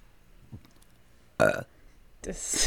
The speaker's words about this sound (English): True or false? I can make myself burp on command.